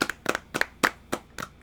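Hand clapping in a short, uneven burst of about eight sharp, close claps with no voices, like a small group applauding briefly.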